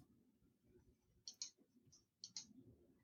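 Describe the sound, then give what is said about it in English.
Several sharp plastic clicks in quick irregular bursts as the keys of a Lego typewriter are pressed, over a low background rumble. “That's a Lego typewriter?”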